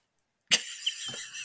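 human body sound, cough

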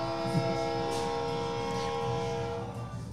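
vehicle, train passing with horn

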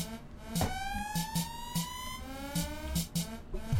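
signal or alarm, siren

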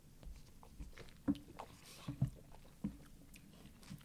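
food or drink, sipping cold beer

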